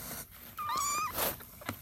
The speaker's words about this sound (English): It's actually many kitties. My cat had kittens last month or so.